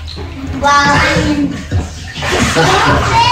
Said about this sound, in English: Then they start splashing me with water.